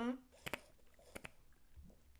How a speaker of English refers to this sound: Sip of water.